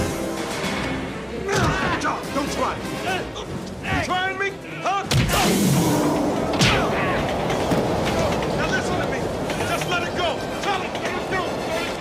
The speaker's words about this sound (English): listen to the punches, Nelson, because it's been exaggerated the entire movie